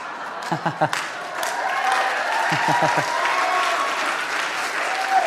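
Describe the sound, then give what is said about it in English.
An audience at a gospel sermon breaks into sustained applause, a dense wash of many hands clapping at steady loudness, with a few sharp isolated claps standing out near the start and some murmuring voices underneath. “So, you can tell there's people in here that have been saved by this gospel because they're clapping about that.”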